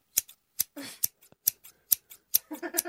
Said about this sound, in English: Is he got one of his bandmates, a girl, to play the scissors for the whole song. As in, what do you mean, scissors? I've got a pair of scissors. During the song, she was doing this.